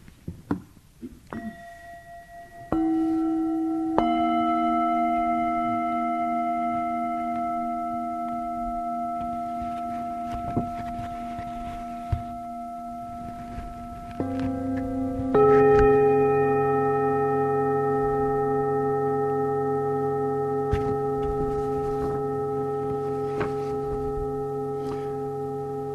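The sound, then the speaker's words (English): Meditation bells ring out in about four overlapping strikes, each leaving a long, steady, humming tone of low and mid pitches that lingers and slowly fades, with no talking. “This is a practice of opening to the hearing, as well as what the room itself, the sound of the bells.”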